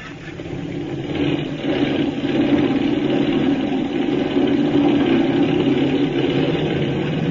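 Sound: airplane engine revving up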